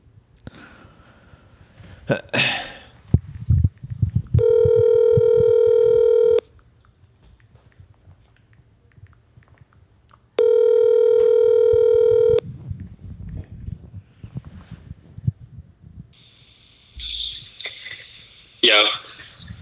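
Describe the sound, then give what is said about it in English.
A phone call rings out after brief dialing: two long, steady electronic ring tones, each about two seconds, separated by a pause, with some muffled background noise and rustling around them. “Let me give him a call.”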